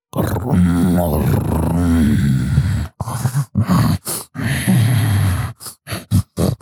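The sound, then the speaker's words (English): A voice imitates a monstrous creature's growl: a loud, rough, wavering snarl lasting about three seconds, then a string of shorter guttural grunts and snorts in uneven bursts, with no words. “As that happens, you watch as the chewing sound stops. This growl.”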